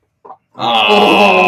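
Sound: person imitating chicken clucking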